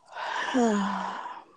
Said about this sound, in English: No, not the yawning, not the groaning. I'm sleepy.